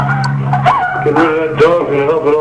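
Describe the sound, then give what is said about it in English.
A little dog whimpers and lets out a few short, yelping barks, its whiny cries rising and falling over a steady low hum. “Get rid of that dog and help an awful lot.”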